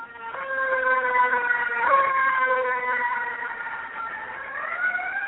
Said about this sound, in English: let me let the fire truck go by, sorry. I live on a busy street.